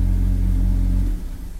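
A United States Postal Service postal truck engine rumbles steadily in a low, heavy drone as it drives past, then drops off sharply near the end as the vehicle moves away. No voices are heard.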